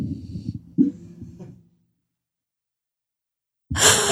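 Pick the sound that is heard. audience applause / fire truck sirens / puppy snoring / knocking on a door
puppy snoring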